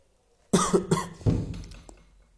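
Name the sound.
coughing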